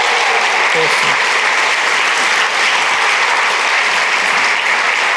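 A crowd applauds loudly and steadily, a dense wash of clapping hands that holds at an even level for about five seconds with no voices on top.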